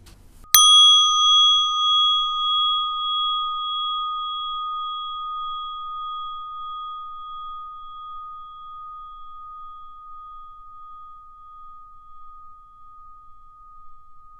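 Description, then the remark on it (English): A single meditation bell is struck once at the end of a meditation, ringing out with a clear, bright tone and shimmering overtones, then slowly fading over many seconds as a long sustained hum lingers on its own. “And when you're ready, at the sound of the bell, gently opening your eyes and coming back to the room.”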